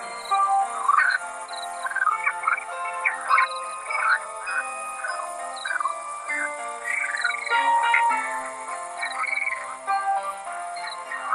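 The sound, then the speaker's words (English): A happy birthday tune played on a banjo, a steady run of croaky, chirping tones that rise and fall in a bouncy melody, fairly loud, with no voices for eleven seconds. “Oh, it was a happy birthday tune.”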